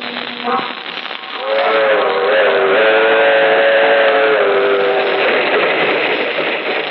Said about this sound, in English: That train is the Southeast Limited. See it? Long, sleek, and powerful. Ticking off the miles on the humming rails.